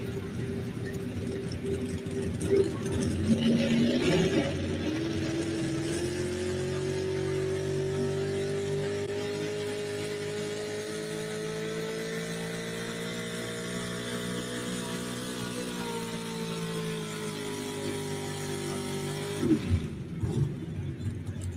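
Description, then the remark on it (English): A pulling truck's engine drones steadily under heavy load for about fifteen seconds during a truck pull, its deep, laboring pitch creeping slowly upward, then cuts off near the end. No voices are heard. “Truck just didn't sound like it ever really come to life for him.”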